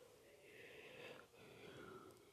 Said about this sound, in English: Alright, now that I'm done yawning.